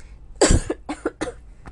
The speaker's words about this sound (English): Oh, pardon me. Oh, sorry about that, folks. Have quite a cough there. Still getting over my cold.